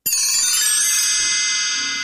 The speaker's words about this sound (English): That's his little theme, his little chime now, anytime we say his name.